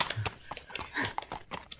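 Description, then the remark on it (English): A person imitates horse hooves with quick clip-clop clicks, about seven or eight in a steady trotting rhythm, fairly loud, with no talking over them. “doing the horse sound. I hate it. That's a terrible horse sound.”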